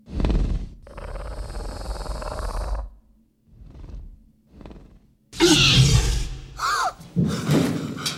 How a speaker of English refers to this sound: Yeah, and that's just a horse breath. I remember recording horses and just get really close to the horse.